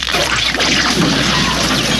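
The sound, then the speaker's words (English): A phone is hurled across a room and smashes with a loud, harsh crash, followed by about two seconds of dense, noisy clattering and rattling debris. No one speaks. “I'm going to throw my phone. I'm going to whip it across the room.”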